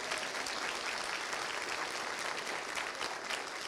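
An audience claps steadily in a dense, sustained round of applause for the Lamar Avenue Adult Chorus. Many hands blend into a loud, continuous wash with no voices on top.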